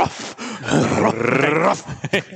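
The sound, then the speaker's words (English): A person growls in a deep, rumbling voice, imitating the Cowardly Lion from The Wizard of Oz, rising into a sustained roar-like groan before breaking into short breathy bursts, fairly loud. “Do the cowardly lion.”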